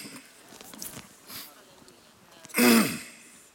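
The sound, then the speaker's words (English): A preacher gives one loud cough during a sermon, a short harsh burst that rises out of softer breathy sounds and quiet background noise. “My wife's over there going, oh Lord, he's coughing again.”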